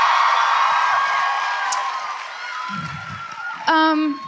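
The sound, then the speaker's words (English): A live audience claps and cheers in a dense, steady wash of applause that gradually thins, with murmured voices underneath and a sharp, high whoop rising near the end. “I think it's hilarious that actually is like an applause cue for you guys.”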